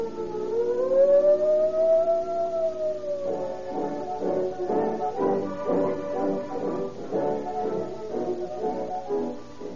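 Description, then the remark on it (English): A toy police siren whistle, the official junior police siren whistle from a junior detective outfit, shrieks loudly, a sustained wail that rises and falls, then breaks into rapid pulsing warbles for several seconds, with no one talking. “Those shots came from the official junior police pistol, and that siren shriek came from the official junior police siren whistle.”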